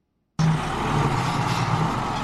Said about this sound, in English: On the outskirts of Samara, a town in Ethiopia's Afar region, tractors prepare the soil to plant wheat. Irrigated fields are a rare but increasingly common sight in the region.